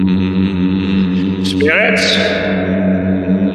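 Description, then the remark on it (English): Several voices hold a steady, low bass hum together during a Ouija board channeling of Elder Packer, a sustained droning chord with a brief higher vocal sweep partway through, no words spoken. “I need you guys to get in the, so if you could just do like a low bass hum.”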